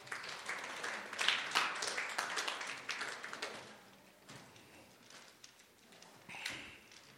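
Audience applause, a dense wash of many hands clapping that swells loudest in the first few seconds, then thins and softens, with a brief renewed burst near the end.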